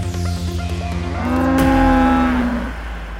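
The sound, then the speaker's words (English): A cow lets out a single long, loud moo, rising and then sliding down in pitch over a few seconds, with no talking around it. “However, in recent months, she has begun sharing photographs of and appearing in public with a cow.”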